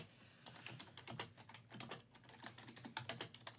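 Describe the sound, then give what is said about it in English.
Rapid, forceful keystrokes clatter on a computer keyboard, a dense irregular burst of sharp clicks, with no voices. “Who's typing? Aggressive you, typing from DJ.”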